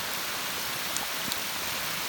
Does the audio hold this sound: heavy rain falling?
yes